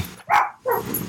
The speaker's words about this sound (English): Lord, what are they barking at?